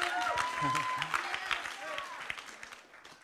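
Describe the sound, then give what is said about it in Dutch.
An audience claps steadily in dense, irregular bursts that fill the whole clip at moderate loudness, with voices rising and calling out over the applause. “Oh, wauw, kijk, gaan ze klappen.”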